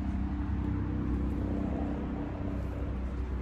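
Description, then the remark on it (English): A helicopter drones overhead, a steady, continuous low roar with a deep humming engine tone and no pauses. It holds at a fairly even loudness throughout, and no one speaks. “Here comes the helicopter.”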